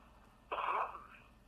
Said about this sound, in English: I've had this cold all week and it keeps making me want to cough